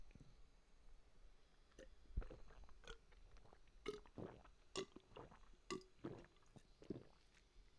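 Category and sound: food or drink, drinking water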